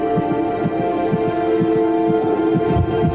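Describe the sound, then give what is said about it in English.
A rapid heartbeat of an unborn baby in the womb thumps steadily in quick, regular low pulses, set against a constant humming drone that fills the background. No one speaks. “Hear that, Mom? My heart is beating so fast.”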